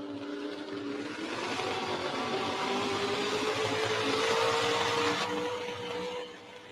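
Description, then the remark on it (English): A naturally aspirated two-wheel drive pulling truck, the Dirt Diva, roars at full throttle, its harsh, gritty drone climbing slowly in pitch as it strains under load, then cutting off abruptly near the end. “Our naturally aspirated two-wheel drive truck class is sponsored this weekend by Terry's Repair.”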